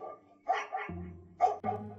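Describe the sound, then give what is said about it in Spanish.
A neighborhood dog barks four times in two quick pairs, sharp, with a low steady hum in the background and no voices. “Imposible descifrar el misterio o mínimo hallar la razón de mis vecinos para tener sus perros en las cocheras, amarrados, cuidando no sé qué, acosando fantasmas en su metro cuadrado que su soga les permite.”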